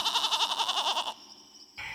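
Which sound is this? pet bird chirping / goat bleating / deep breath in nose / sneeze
goat bleating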